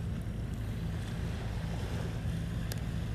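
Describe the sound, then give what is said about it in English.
A boat's engine drones steadily over rushing water and wind noise, a constant low hum with a faint brief click near the end. No one speaks. “Anyways, there's a boat right now. We can hop on it.”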